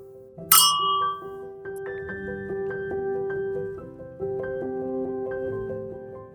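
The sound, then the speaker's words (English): Glasses clink once in a bright toast near the start and leave a ringing tone, followed by soft chiming, bell-like notes that carry on steadily. No one speaks. “I raise my glass to new experiences, old stories, and to you, my loyal friends. Cheers.”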